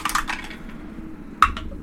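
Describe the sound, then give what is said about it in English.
Dice fall out of a dice tray and clatter and tumble onto a hard surface in a quick burst of small rattling knocks, then one sharper clack a moment later, with no voices. “My dice fell out of my dice tray.”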